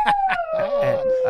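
A dog howls in one long, wavering cry that slowly slides down in pitch, with short whimpering yelps breaking in at the start and end.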